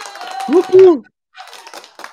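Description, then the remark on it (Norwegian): A short burst of applause, dense clapping with a brief rising-and-falling whoop partway through, then a quiet gap before a second, lighter round of clapping. “En rett og slett en applaus.”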